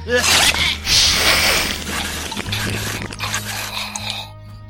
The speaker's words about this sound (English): Oh, yes, my darlings. That's it. Oh, chew that. Chew that. I knew you would lack that.